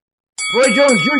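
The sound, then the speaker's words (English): A boxing ring bell strikes once, loud, signaling the start of round six, its bright metallic tone ringing on steadily while a man's voice speaks over it. “Ring the bell, round six.”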